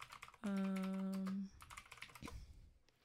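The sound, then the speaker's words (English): Rapid clicking of a computer keyboard being typed on, with a loud steady buzzing tone sounding for about a second near the start. “Sorry if you can hear my keyboard.”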